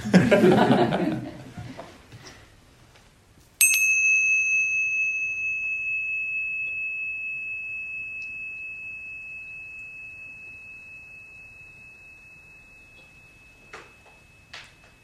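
After a short burst of murmuring noise, a bell is struck once and rings out with a clear, pure, high tone that slowly fades over about ten seconds in near silence.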